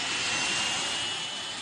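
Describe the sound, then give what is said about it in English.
A jet engine roars loudly and steadily, like a plane taking off, a dense rushing wall of noise with a thin high whine and no voices. “As much as a plane taking off.”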